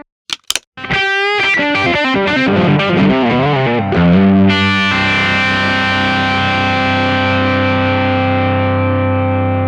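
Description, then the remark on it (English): Electric guitar through a Fairfield Circuitry Shallow Water modulation pedal: two quick plucks, then a run of notes with a warbling, wavering pitch, ending on a loud sustained chord that rings out and slowly fades. No voices. “I got that specifically to add all this character to the guitar sound.”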